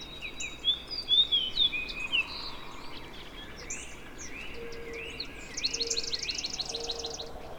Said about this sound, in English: There, I heard the ringing trill of a dark-eyed junco.